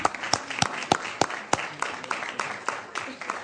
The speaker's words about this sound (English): Wow, nice. You had to clap for that. Clap for that.